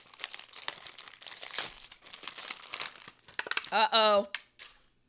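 A bag of organic roasted teriyaki seaweed snacks crinkles and crackles in steady bursts of sharp, papery rustling, followed near the end by a short, loud vocal exclamation with a rising pitch.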